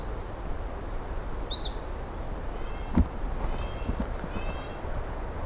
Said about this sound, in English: It's a really loud American redstart there for a second.